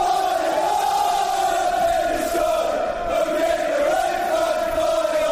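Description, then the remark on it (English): A large football crowd sings a fairly generic football chant, one sung by clubs up and down the country: a loud, sustained sung note held steadily with a slight rise and fall, many voices blending into one continuous roar. “Now, of course, you get football chants like this, which are fairly generic, which are sung by clubs up and down the country.”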